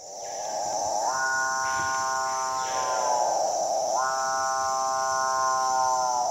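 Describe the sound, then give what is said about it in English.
A capuchinbird gives two long, drawn-out moaning calls, each swelling upward in pitch and holding a droning, cow-like tone, loud over a steady high background hiss. “Capuchin bird.”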